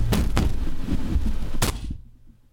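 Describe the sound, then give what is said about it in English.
Three loud, sharp bangs on a piece of Zenith equipment, struck to fix it, two close together and then one more after a pause, over a low rumbling hum that fades out at the end. No one speaks. “I got to bang the zenith.”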